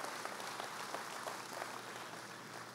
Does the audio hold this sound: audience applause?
yes